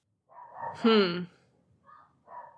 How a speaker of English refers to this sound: A dog agrees. Yeah, the dog is barking up a storm out there.